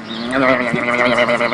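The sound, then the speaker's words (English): A baby goat eating a Dorito tortilla chip lets out one long, wavering bleat, loud and nasal, filling the moment on its own without any talking. “Okay, so also in our week in review, our favorite pet of the entire week who's gone viral, our baby goat eating a Dorito.”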